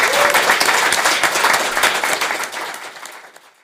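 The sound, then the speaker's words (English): An audience applauds, a dense patter of many hands clapping at once, loud at the start and gradually thinning and fading out over a few seconds. “Quick round of applause, please”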